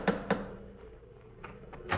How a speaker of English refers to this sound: Well, here we are once again, about to lift the knocker of Dr. Watson's familiar front door. Phew, it's covered with icicles.